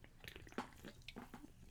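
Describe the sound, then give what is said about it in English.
A short, quiet run of wet sipping and slurping noises as someone takes a slurp of a drink, with several squishy liquid bursts and no talking. “Just took a slurp of my drink.”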